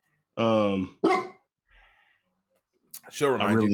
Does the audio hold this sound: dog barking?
yes